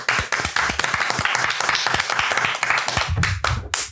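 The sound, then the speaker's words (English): A group applauds steadily, with many quick overlapping claps forming a dense, continuous patter that ends in a few louder, separate claps and a low murmur. “Clap and say, do that.”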